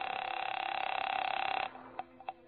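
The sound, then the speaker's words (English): A telephone at the Hotel Lee in Charleston rings at 8:30 p.m. with a steady, buzzing electric tone for over a second and a half, then cuts off, followed by a few sharp clicks like a receiver or dial. “by the time I checked in, and my first move was to the phone.”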